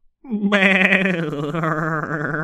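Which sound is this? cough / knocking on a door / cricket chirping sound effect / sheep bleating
sheep bleating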